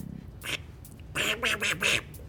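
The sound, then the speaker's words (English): A person imitates a duck with nasal, raspy quacks: one short quack, a brief pause, then a quick run of about four louder quacks in a row. “they do a really great impression of a duck.”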